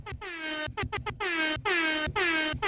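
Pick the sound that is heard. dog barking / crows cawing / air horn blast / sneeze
air horn blast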